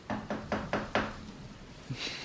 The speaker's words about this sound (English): So on the 31st of October, he was at home, and someone knocked on his door.